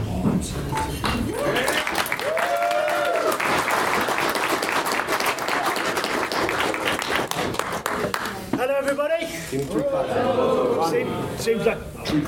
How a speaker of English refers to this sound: Seems like three claps. Oh yeah, you're gonna give me the clap.